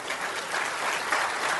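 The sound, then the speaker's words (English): Steady applause from a crowd, many hands clapping at once in a dense, continuous patter for the whole moment, with no voices rising above it. “If you agree with that, would you clap your hands?”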